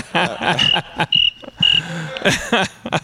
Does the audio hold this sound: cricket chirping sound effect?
yes